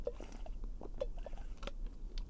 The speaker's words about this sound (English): Gotta take a sip of water.